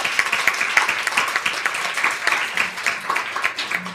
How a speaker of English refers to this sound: Please give everyone up here a big, big round of applause.